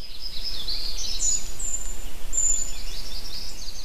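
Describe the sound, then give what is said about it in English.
Birds chirp steadily outdoors, thin high calls and short whistles layered over a constant shimmering background, with no voices present. “The smell of freshly cut grass, the sounds of birds chirping, and the sight of scouts from all ages.”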